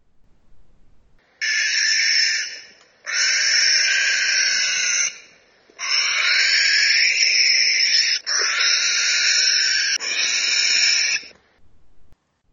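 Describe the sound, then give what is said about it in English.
A barn owl screams in long, harsh, hissing bursts, four or five drawn-out rasping shrieks with brief gaps between them, loud, with no talking. “But, like, let me play for you the barn owl screaming.”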